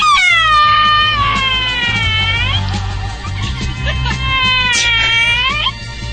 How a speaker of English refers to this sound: Last week, you ran into a singing dog at the America's Family Pet Expo. I did. He was quite the singer.